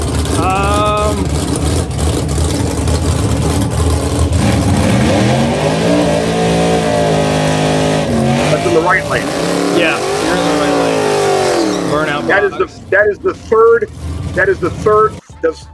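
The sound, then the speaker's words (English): A drag race car roars at full power on its third full power pass, at night under the lights at Norwalk during a national event. Its loud engine note climbs and sweeps upward in pitch for about twelve seconds before breaking into choppy, sputtering bursts. “That is the third full power pass on the car.”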